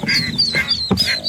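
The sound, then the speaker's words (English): A mother duck quacks repeatedly in quick bursts, loud, with a slightly tinny, played-back quality: a recording played on a cell phone by an animal control officer to coax 11 baby ducks out of a storm drain in the Central Valley. No one speaks over it. “Playing Mama Duck sounds on her cell phone.”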